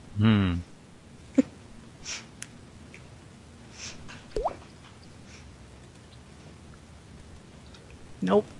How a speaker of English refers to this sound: Nope. I hear drips.